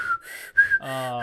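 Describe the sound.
A person imitates an inhale-exhale whistle in short breathy bursts, alternating airy inhale and exhale tones, the last note turning into a buzzy harmonic whistle. Fairly loud, with no talking.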